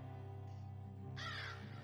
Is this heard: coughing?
no